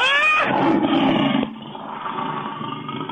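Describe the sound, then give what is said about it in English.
A loud, rasping snarl from someone who has turned rabid: it opens with a sharp, strained cry, then settles into a continuous rough, guttural growl lasting about three seconds, like a rabid dog snarling and growling. “Like Cujo in the book and subsequent film Cujo, the rabid dog.”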